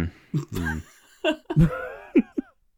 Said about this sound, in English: I was just clearing my throat, ready for the correct answer.